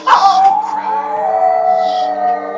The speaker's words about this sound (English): And immediately, there was activity in the woods surrounding us. We could hear, far in the distance, the wood booger's howl.